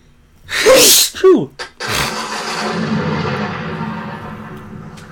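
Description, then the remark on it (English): A loud sneeze: a couple of sharp, breathy inhales build up to an explosive burst, followed by a few seconds of steady, noisy breathing. “I'm about to sneeze. Give me a second here.”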